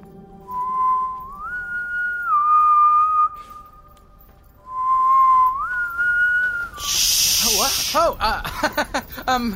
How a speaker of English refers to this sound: There it is again, the hum.